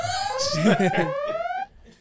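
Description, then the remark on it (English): A siren sound effect: one loud, steadily rising wail with bright overtones, lasting about a second and a half before cutting off abruptly. A voice briefly murmurs beneath it. “For that, siren.”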